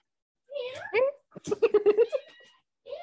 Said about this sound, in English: There it is. There's that meow.